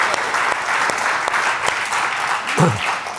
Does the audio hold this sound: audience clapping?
yes